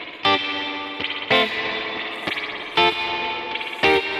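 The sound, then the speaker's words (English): An electric guitar played through a Kemper fuzz with mild distortion plays chords in a steady rhythm, each strum sharp and bright, with sustained ringing between hits and a slight chorus-like shimmer. “A bit too much distorted. I need to turn down. This is really a very thin line.”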